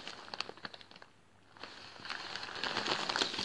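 Crackly crinkling of paper being handled, with sharp irregular rustles that pause briefly and then build into denser, louder crumpling toward the end.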